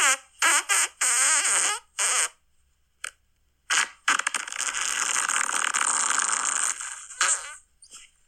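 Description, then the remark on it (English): A series of fart sounds: several short, squeaky blasts, then a long, loud, raspy sputter lasting a few seconds, ending with a couple of brief puffs. Close and clear, with no talking. “If you definitely want us to read your name, just message your name underneath your fart submission and we'll read it.”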